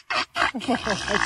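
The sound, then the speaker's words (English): A blue rubber screaming chicken toy lets out two raspy, wheezing bursts, then a longer, wavering squawk that rises into a shrill, strained cry. “Blue screaming chicken.”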